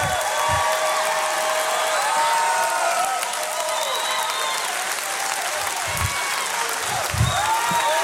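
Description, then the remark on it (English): A church audience applauds during a praise break in a service, in steady, dense clapping that fills the whole stretch, with scattered voices and cheers rising through it and a few low thumps near the end. “Oh, I wish somebody would hand clap because God did something for you.”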